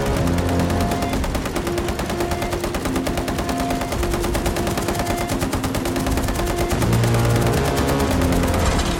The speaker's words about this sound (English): The key moment of that sequence probably is when we see the sewing machine, and then the sound of the sewing machine kind of morphs into the sound of a machine gun.